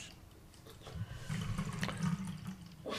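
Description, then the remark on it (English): The last of a bottle of drink is poured out steadily for about two seconds, a gurgling stream that starts and stops cleanly, with no talking over it. “Yes, he's poured the last of this bottle into somebody who said they didn't really don't know how they felt about the drink.”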